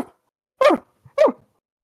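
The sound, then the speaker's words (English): Two sharp dog barks about half a second apart, fairly loud, with a brief faint yelp before the first and silence around them; no one speaks. “In the background, the dogs, as well.”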